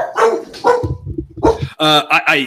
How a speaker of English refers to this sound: The dog's barking, which is perfect.